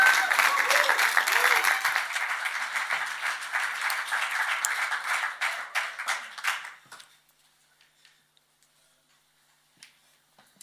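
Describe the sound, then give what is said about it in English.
A crowd applauds a musician coming up to perform, in a dense, steady wash of clapping that holds strong for several seconds, then thins into scattered claps and fades to near silence. “So how about we give another round of applause as he comes on up.”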